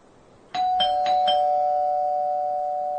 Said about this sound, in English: And then all of a sudden, at the door, doorbell rings.